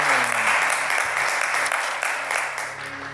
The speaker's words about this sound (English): Praise God. Give Pastor Nathaniel another round of applause. Amen. Amen.